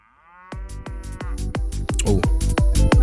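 A loud techno bootleg remix with a fast, pounding four-on-the-floor kick and hissing hi-hats, opening with a drawn-out cow moo sample that continues over the beat.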